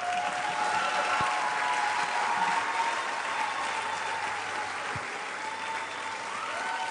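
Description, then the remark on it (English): Sustained applause from an audience in Nigeria, welcoming a creative director of Writers Inc. It is a dense, steady wash of many hands clapping at even loudness throughout, with a faint murmur of voices beneath and a couple of sharp thumps. “Keep clapping.”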